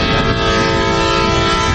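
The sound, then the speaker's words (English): A big freight train rumbles past on the tracks right here, loud and steady, with a deep low-end roar and sustained tonal hum filling the whole moment. “You can tell we got the big train going by here on the tracks. Pretty loud.”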